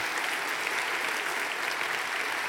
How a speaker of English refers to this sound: So give these students a round of applause. Thank you guys for your service.